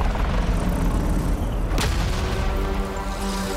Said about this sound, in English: Drone blew up.